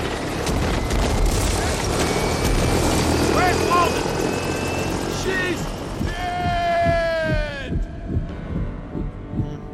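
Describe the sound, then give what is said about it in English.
A rescue helicopter roars, its rotor thumping steadily beneath dense engine noise, with muffled voices and a brief whining tone rising through the din. “So when they're on the chopper, the chopper pilot asks the question.”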